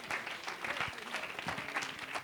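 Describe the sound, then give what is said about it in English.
A church audience bursts into sustained applause for a preacher, many hands clapping together in a dense, steady roar at a loud, even level throughout. “Let's give a good man of God a good hand clap in this house tonight.”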